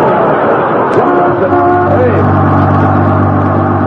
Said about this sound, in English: that's a Los Angeles bus. What's it doing up here in Alaska? It must be the bus that runs to the Los Angeles city limits.